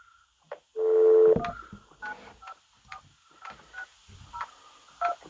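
phone dialing a call

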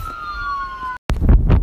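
ambulance siren passing

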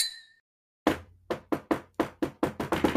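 knocking on a door

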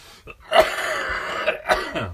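coughing and throat clearing

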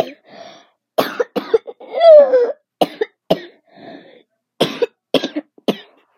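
coughing

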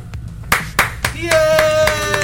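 applause sound effect

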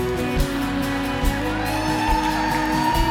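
audience cheering

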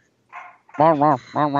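dog barking

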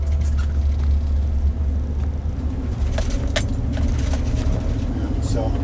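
car driving

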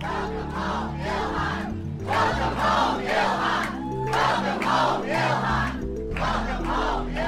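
large crowd cheering

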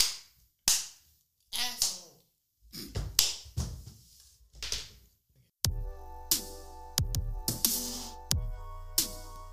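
hands clapping

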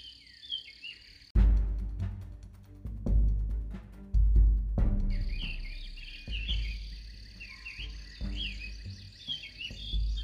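birds singing

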